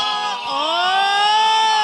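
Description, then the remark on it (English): A voice imitates a telephone dial tone, holding one steady, buzzy note that slides up briefly at first, then stays level and loud for nearly two seconds. “It's the year 2018. I haven't heard a dial tone in a while.”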